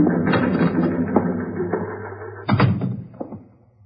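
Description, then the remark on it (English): A stenographer types up a statement on a typewriter that clatters away with quick, uneven keystrokes and occasional heavier mechanical thumps, steady, before the typing slows and fades out near the end. “It was 12 noon when the stenographer completed typing the statement”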